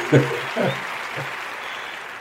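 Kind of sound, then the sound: crowd, applause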